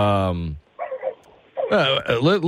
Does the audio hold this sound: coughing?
no